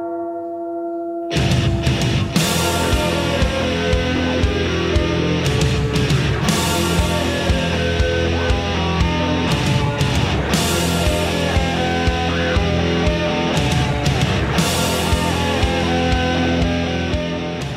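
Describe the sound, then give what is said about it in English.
A loud, heavily distorted bass guitar plays a sustained riff through a wah-wah pedal as the opening part of a song, its tone sweeping. Sharp accents recur about every four seconds, and there are no voices. “the opening part of that song is not a guitar, but a bass. … played that opening part with wah-wah and distortion.”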